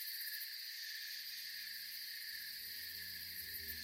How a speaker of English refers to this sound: It was the voice of the forest. I could hear the crickets, owls, and I was really able to feel cold breeze which carried the perfume of the wet soil.